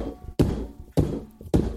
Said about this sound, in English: Oh, look at me! I bang on my drumsticks all day.